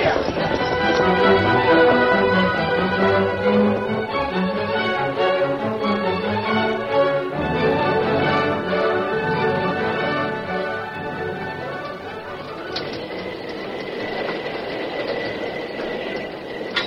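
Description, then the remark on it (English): A fast-moving train engine, with the Lone Ranger in the cab trying to stop it before it reaches a river where the bridge is gone, roars steadily and loudly, its dense, rumbling drone holding unbroken for the whole stretch, with layered tonal whines riding over the rush. “Inside the cab of the engine, the Lone Ranger, deserted by the fireman and the engineer, worked frantically to bring the fast-moving train to a stop before it reached the river and plunged into the void where the bridge had been.”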